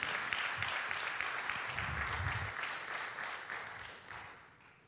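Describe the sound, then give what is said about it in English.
An audience applauds for Jesus during a sermon, a steady, dense wash of clapping with a few low voices murmuring underneath, the clapping gradually tapering off toward the end. “Come on, you can give him a good round of applause today.”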